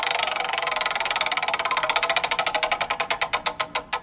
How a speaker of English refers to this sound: So we're going to spin the wheel and get you a category, and then we're going to ask you a couple of bout it or doubt it questions, okay?